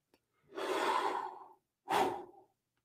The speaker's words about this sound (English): As I yawn again, my apologies.